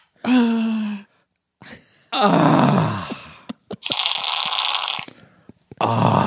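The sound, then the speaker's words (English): A voice acts out a fart with a series of mouth noises: a strained, low groan, then sputtering, buzzy bursts and a long hissing raspberry, fairly loud, with no words spoken. “You're like the Robert De Niro of fart acting.”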